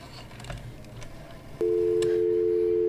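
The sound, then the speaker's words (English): A telephone receiver is fumbled and lifted with soft handling clatter, then a loud, steady dial tone hums continuously from the earpiece; no people speak. “I've got to... The phone.”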